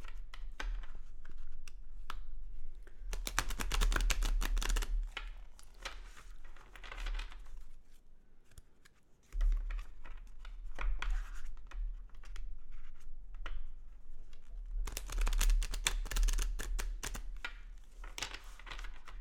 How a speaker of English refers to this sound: Okay, and I'm shuffling. I'm going to go ahead and cut the deck, and I usually like to cut the deck and then restack it and then pull from the top.